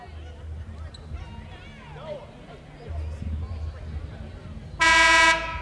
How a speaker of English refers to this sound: Now a whistle sounds. What do we got here?